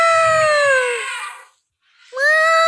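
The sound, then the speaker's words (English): A person trumpets like an elephant in two loud, strained, high-pitched wails, a long sliding cry and then a shorter one after a brief pause. The result sounds more like a distressed cat. “That's an elephant. Are you sure? That's some bootleg elephant, bro.”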